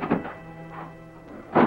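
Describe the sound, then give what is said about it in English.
A door opens into the kitchen of a ranch house with a series of muffled thunks and knocks, a soft one early on, another midway, then a louder, fuller thud at the end, over a faint steady hum. “He was alone for several minutes, then the door opened.”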